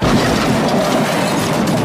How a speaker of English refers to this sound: Have you ever witnessed one live and you're like, ooh, good sound? Well, it is good sound. You know, you and just to make it clear, nobody was hurt in the making of this car crash sound.